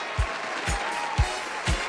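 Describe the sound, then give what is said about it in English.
A crowd applauding in a steady, dense wash of clapping, with low rhythmic thumps landing about every half second beneath it. No one speaks. “Okay, they gotta clap themselves out here”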